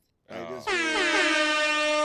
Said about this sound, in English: Like, yeah, what the fuck is the air horn?